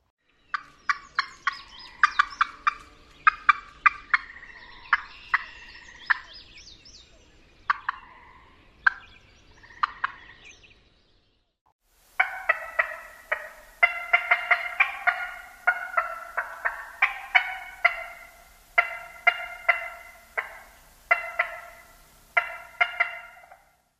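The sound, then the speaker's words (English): A female wild turkey's alarm call: rapid, sharp, clucking notes in two close, insistent bouts split by a brief pause, with no voices. “Female turkeys have an alarm call that sounds like this.”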